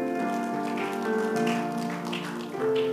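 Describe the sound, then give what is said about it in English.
A church audience claps for themselves at the preacher's request, in a steady, dense patter of overlapping hand claps, mixed with sustained keyboard chords that hold and shift beneath the applause. No one speaks. “Clap for yourselves.”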